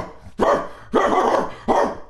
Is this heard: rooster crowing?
no